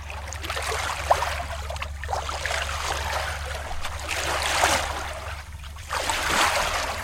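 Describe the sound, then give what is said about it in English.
Rushing seawater pours steadily through opened canal locks at Nieuport, Belgium, flooding the lowland, a continuous churning wash that swells and ebbs in waves over a low, constant rumble, with no voices present. “The seawater rushed in on the Huns, first up to their boots, then quickly the water was up to their knees and rising, forcing them back to Ypres.”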